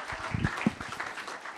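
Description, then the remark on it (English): An audience applauds a speaker in a steady wash of overlapping claps, moderately quiet, with a few sharper individual claps standing out near the start. “And so if you just want to give him a round of applause and he will bless you.”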